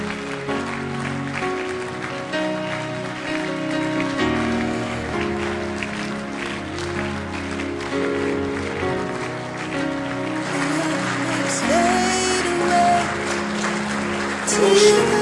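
An audience claps their hands steadily for the whole stretch, a dense, continuous wash of clapping blended with sustained music, fairly loud and swelling slightly near the end.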